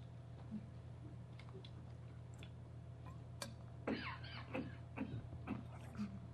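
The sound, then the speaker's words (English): A person coughs several times in short, rough bursts over a steady low hum. “Does anybody have a cough drop?”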